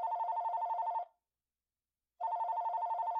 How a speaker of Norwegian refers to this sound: Etter noen dager ringer telefonen hjemme.